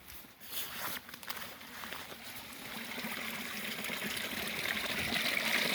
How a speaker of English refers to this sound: and it's actually by a little stream here. Oh, and the water levels have gone down a bit because the other day the rain was falling a lot, and then what it was doing, it was overflowing, kind of, so we didn't want to get too close.